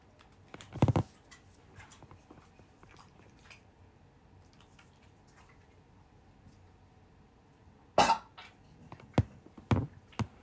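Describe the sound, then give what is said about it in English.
A coughing fit from someone coughing up peanuts: one sharp, harsh cough early on, a quiet stretch, then a cluster of several rough coughs in quick succession near the end. Fairly loud, with no talking. “Give me no peanuts, nigga, if you don't be coughing them up like that.”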